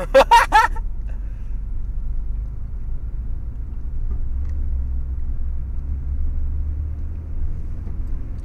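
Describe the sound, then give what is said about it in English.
A car engine idles with a steady, low rumble while the car is put in park, continuing throughout, even in loudness. A brief burst of voice is heard at the very start. “You should have saved some money on this recorder and put it toward this car.”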